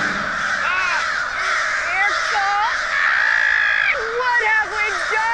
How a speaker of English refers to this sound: I literally wrote down, those are birds. Those are birds.